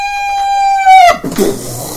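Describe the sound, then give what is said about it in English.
A voice imitates a squeak: a high, sustained squeak held for about a second with a slight downward bend, then breaking off into a rough, breathy sputter. “And then all of a sudden you hear a squeak!”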